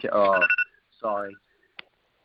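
A phone's tea time alarm rings out in two bright, buzzy tonal bursts, a longer one followed by a shorter one, then a brief sharp click.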